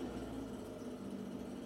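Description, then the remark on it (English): A two-propeller plane's engine idles in a steady, low droning hum with a constant tonal buzz and an even level throughout, with no voices over it. “They flew their plane with two propellers. These are good sound effects.”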